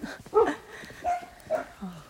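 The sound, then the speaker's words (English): Several short yips and whimpering barks from dogs, a loud cluster early on followed by two quieter whines about half a second apart and a low trailing whimper. “The dogs are communicating.”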